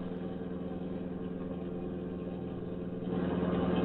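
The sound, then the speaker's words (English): A car engine drones steadily during a chase, a low harmonic hum that swells louder and revs up near the end as the car speeds off the highway. No voices are heard. “Look, other car turning off highway.”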